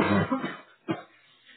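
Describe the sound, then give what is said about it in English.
A throaty cough bursts out at the start, then a second shorter cough follows a moment later, with quiet pauses between and no talking. “A cough always appears at the wrong moment.”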